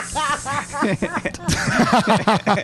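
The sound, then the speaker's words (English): A person does a drawn-out hissing imitation of a regular garden snake, airy, mixed with bursts of voiced, chuckling sounds that rise and fall throughout. “I'm just a regular snake.”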